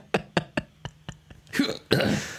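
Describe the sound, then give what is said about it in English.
A person clears their throat: several short, sharp guttural bursts in a quick rhythm, then two longer, rougher rasping hacks. No speech accompanies it. “Sometimes you clear your throat, you sound so different.”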